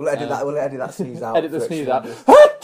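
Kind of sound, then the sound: human body sound, sneeze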